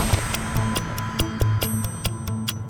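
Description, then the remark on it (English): A clock ticks in a steady, brisk rhythm, crisp clicks repeating several times a second over a low, sustained musical hum, with no voices. “Quick, the clock is ticking.”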